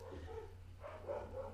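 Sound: dog barking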